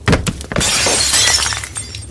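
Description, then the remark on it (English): Glassware full of reagents and chemicals on a table shatters as fire roars across the table: a few sharp, heavy impacts followed by a loud, sustained spray of bright, tinkling shards over a steady low rumble, with no voices. “Glassware breaks and the fire roars across the table, fueled by various concoctions.”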